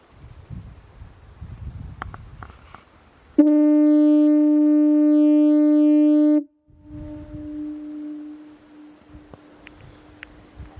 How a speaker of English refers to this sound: Yeah, from the far side, not directly in front of the foghorn. It sounds great. Standing there, holy shit. It's wicked.